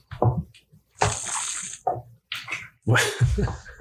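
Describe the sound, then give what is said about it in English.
Wet swishing and sloshing of water rinsed around a mouth while a person drinks water, coming in several loud bursts separated by short silent pauses. “all about trying to pick up sound in everything he does, drinking water, what is swishing.”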